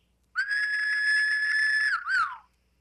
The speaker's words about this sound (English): A whistle that was, right that, there. That was the best whistle man, I've ever heard in my entire life. That was good. That was the first whistle of the podcast.